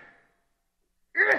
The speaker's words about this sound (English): I don't know why I sneeze all the time. But anyway, maybe because it's so cold here.